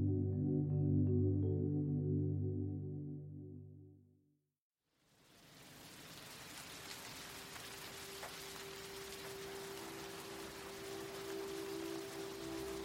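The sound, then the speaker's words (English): A low, sustained harmonic tone fades out into a brief silence, then steady rain begins: a dense, hissing patter that continues evenly to the end, with a faint steady hum beneath it. “Rainy out there, isn't it?”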